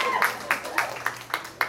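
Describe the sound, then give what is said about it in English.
Thin, sparse clapping from a small part of an audience, about six sharp claps in a steady rhythm, with a faint voice and room murmur underneath. “There's not enough of you clapping, and I don't believe you, but...”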